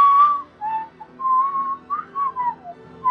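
Someone whistles a short melodic tune, clear, with sustained and gliding notes broken by brief pauses, a few phrases of a familiar-sounding theme with no talking.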